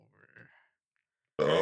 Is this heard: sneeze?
yes